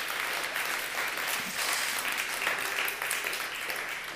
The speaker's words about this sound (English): Sorry, I'll let you clap before I pray.